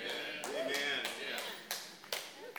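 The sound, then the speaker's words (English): A handful of light, scattered claps, a golf clap of about six soft hand claps spaced unevenly, with voices murmuring and talking underneath. “Golf clap.”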